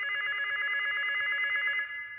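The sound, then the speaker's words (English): A hotel telephone rings steadily in one continuous, bright electronic trill, loud, with no voices over it; the front desk is calling. “The phone was ringing.”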